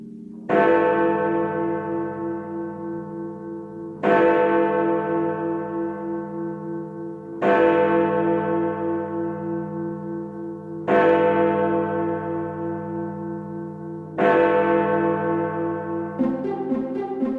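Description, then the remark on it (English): Five deep, resonant bell bongs strike at a steady pace about three and a half seconds apart, each ringing out with rich overtones and slowly fading, marking the SLLET News at 5. No one speaks. “I forget how long the bongs are every week.”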